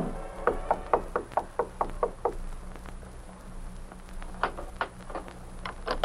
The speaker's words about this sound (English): Reaching the landing at the top, he stood for a moment listening. Then he knocked on the door.